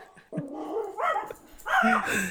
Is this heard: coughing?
no